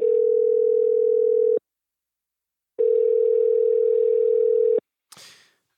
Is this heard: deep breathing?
no